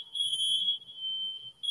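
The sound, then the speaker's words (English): A smoke alarm in a house, set off by burnt toast, sounds a shrill, piercing high-pitched tone that holds steady almost the whole time, cutting out briefly just before the end and then resuming, with faint low rumbling underneath. “Somebody burned a toast in my house.”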